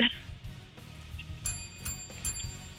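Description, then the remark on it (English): A small bell is rung weakly, held up to a microphone to mark a correct quiz answer, giving two thin, high-pitched dings that linger briefly over a low background murmur. “It was a weak bell, but I gave you another bell.”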